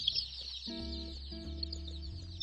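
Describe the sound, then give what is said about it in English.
A dense, nonstop chorus of baby chicks peeping from four shipping boxes inside a car, many high chirps overlapping, over a low steady humming drone; no one talks. “You okay in here, little chicks? Hi, little chicks.”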